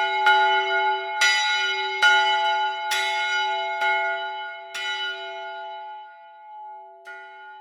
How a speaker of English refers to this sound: Why are these bells so fucking loud?